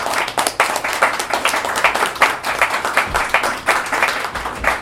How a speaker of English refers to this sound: Ladies and gentlemen, a round of applause.